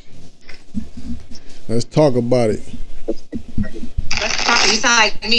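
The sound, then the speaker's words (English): A deck of reading cards is shuffled at the start of a reading: soft papery flicks and taps, a brief voice in the middle, then a loud, sustained riffling burst at the end. “I'm gonna get a few shuffles in.”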